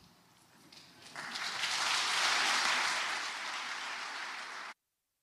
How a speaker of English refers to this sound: Can we give one more round of applause to everyone that's led worship, to our drama team this morning?